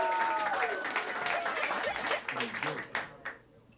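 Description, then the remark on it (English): A comedy audience at the Joke Off show applauds steadily with dense, crackling claps as comedian Leslie Liao is brought up for round three, mixed with whoops and cheers early on, then thins out and fades toward the end. “Clap now for Leslie Liao.”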